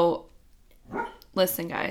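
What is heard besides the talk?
dog barking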